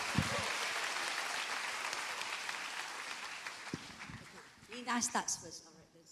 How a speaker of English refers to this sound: Please clap and encourage them.